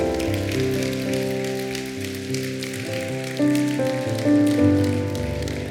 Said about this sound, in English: Give these two a hand clap right now.